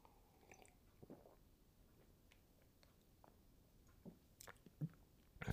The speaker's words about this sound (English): I'm going to take a sip of my drink.